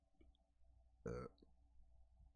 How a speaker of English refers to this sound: Sorry about the burps, everyone.